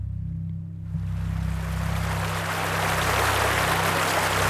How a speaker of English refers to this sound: Magpie can hear water rushing nearby as she and Lucas trample through a large field.